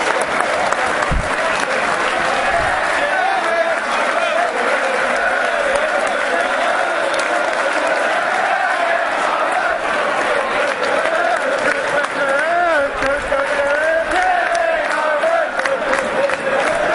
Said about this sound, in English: Kevin Nolan. Told you, everyone hates him, but look at that, everyone's cheering him.